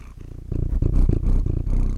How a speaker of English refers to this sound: Izzy's here right now, the cat. Say hi, Izzy. Say hi. ASMR. Can you hear purring?